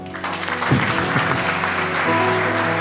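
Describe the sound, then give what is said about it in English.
A crowd applauds steadily for a few seconds, a dense wash of clapping hands, with a sustained organ-like tone and faint voices underneath. “You can clap.”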